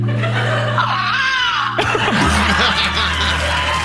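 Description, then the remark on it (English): A voice imitates a hawk's call as a 'sexy' animal noise: a loud, high, sweeping screech that rises and falls for about two seconds, then breaks into noisy, breathy laughter. “I can do a really sexy hawk.”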